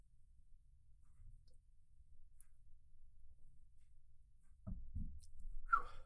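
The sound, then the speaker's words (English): Someone takes a sip of water: mostly quiet at first, then two soft, low thumps from handling the container, followed by a brief wet gulping sound near the end. No talking. “Taking a sip of water.”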